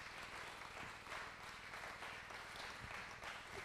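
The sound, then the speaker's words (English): A church audience applauds steadily, giving the Lord a clap offering, many hands clapping in a dense, continuous wash of sound at an even loudness throughout, with no voices standing out. “Can we put our hands together and give the Lord a clap offering?”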